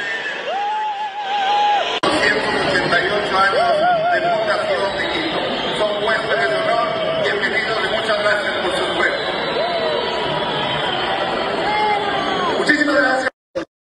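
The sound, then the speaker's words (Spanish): A large crowd boos and shouts in a dense, sustained roar that holds steady for about eleven seconds, with a lone voice just before it swells, then cuts off abruptly; the crowd is booing at the mention of the capital's mayor, Santiago Guarderas. “Pero ayer cuando lo mencionaban, se daba este mamá abucheo.”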